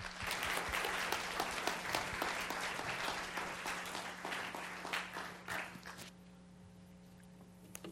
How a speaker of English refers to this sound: We wanted to give him a warm Village Bible Church welcome, and just give him a warm applause and welcome him to share the Word of God with us today.